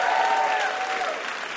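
An audience claps in a dense, steady burst of applause, broad and noisy, fading slightly toward the end, with a faint whistle-like tone running through it.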